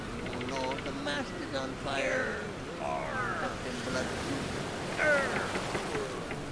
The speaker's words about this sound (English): I'm going to set you off onto a magical journey with the sound effect. Maybe it's the sound of a ship, pirate ship. And the sound of a bunch of angry pirates floating down a magical sea in the 16th century, let's say. Enjoy.